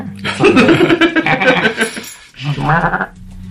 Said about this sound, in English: You hear a goat in the distance, you know, just nice little farming town. Can I hear that goat sound again, please?